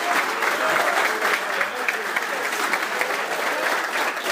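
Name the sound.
audience applause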